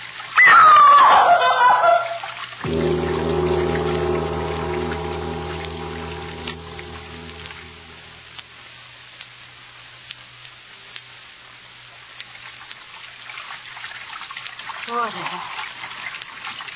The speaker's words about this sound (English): That sound. Running water. Over this way.